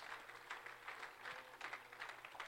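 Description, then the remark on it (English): At a worship service, an audience claps their hands to the Lord, a dense, steady patter of many overlapping claps that continues throughout with no one speaking over it. “Can we clap our hands to the Lord one more time?”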